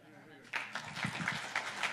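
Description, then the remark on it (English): After a short quiet moment, an audience at a public meeting breaks into light clapping after a public comment: a run of sharp, uneven claps over the low murmur of voices. “let's try to get back to not clapping after every comment, please.”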